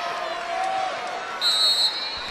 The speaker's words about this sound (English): Belmont crowd trying to inspire them into set number three here.